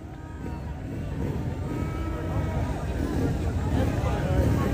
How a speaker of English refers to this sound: Ten motorcycles ready to go. Beautiful Harleys.